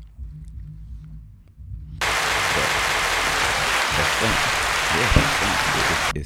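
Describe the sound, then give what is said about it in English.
After two seconds of quiet, low murmuring, loud, dense hand clapping bursts in and continues steadily for about four seconds, a hissing, rain-like wash of claps that stops abruptly. “The reason why I clapped is because that's it for another pod.”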